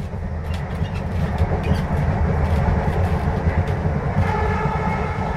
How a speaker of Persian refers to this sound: توی ضلع جنوبی پارک اولین قطار دیزل ایران روی ریل خودش قرار گرفته.